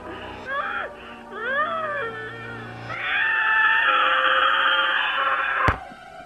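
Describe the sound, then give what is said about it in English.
A man screams in agony over a phone call: two short anguished wails, then a long, loud, strained shriek held for several seconds before cutting off abruptly with a click. “This time he was screaming.”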